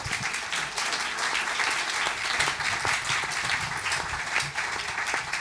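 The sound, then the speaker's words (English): An audience breaks into steady applause, a dense, even wash of many hands clapping at once that holds at a fairly loud level throughout without fading. “At last, you get some applause.”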